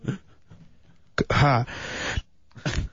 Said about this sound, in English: God bless you. Good evening. All right. Yeah, who sneezed? Oh, I love that one.